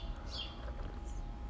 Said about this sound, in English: The birds are pretty noisy this morning, too. It's a beautiful day here in Arizona.